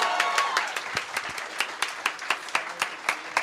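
An audience applauds, starting as a dense wash of clapping that thins into a steadier, rhythmic patter of individual claps, at a moderate level with no voices.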